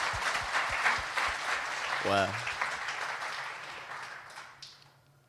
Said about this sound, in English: I think we should give God a round of applause for that. Yeah.